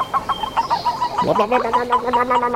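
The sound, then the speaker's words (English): A male boreal toad gives a competitive call, made when it encounters another male rather than to attract females: a rapid run of short chirping, cluck-like pulses, fairly loud, with a brief rising squeak partway through. No other sounds accompany it. “They make that noise when they encounter another male. So that is a male toad”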